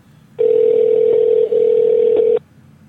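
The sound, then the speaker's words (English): A telephone rings on a call to a Circle K store in Little Rock, Arkansas: a single steady ringing tone hums for about two seconds at moderate loudness, then cuts off, heard through the line with no one speaking. “Let's call a Circle K, and let's say this right here.”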